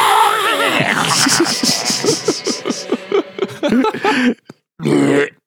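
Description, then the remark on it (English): A harsh, raspy vocal screech imitating a screamo scream, done in a song verse where the music cuts hard into the riff; loud and strained, breaking into choppy gravelly pulses before cutting off, then a short second burst after a brief pause. “And just do a little like screech.”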